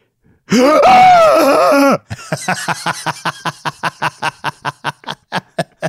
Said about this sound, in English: That was not a gasp. That was a shriek. Okay. It was a gasp leading into a shriek. That was a female shriek.